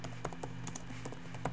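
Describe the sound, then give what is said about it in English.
Quick, uneven keystrokes clatter on a computer keyboard as someone looks up murder laws online, a steady run of clicks over a low background hum, with no one speaking. “I'm sorry if you guys are hearing typing on my end, but I don't want to look this shit up on my fucking phone, okay?”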